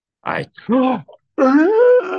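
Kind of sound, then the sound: human body sound, exaggerated yawn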